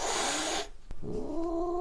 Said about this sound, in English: The kitten hissed and issued a low growl, which made Smudge back away nervously.